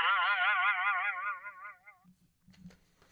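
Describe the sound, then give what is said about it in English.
A loud twangy boing rings out, its wobbling pitch vibrating for about two seconds before decaying, followed by a few soft low thumps and faint rustling. “Still not sure if that's a rubber band or if that's an arrow going in.”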